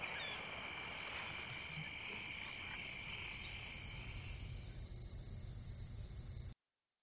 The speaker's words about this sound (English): So instead of hearing sounds from a busy city, the man closes his eyes and instead hears the sounds of nature, the faint waves from the ocean, the breeze blowing through the halls and out through the trees, and the loud, happy din of crickets.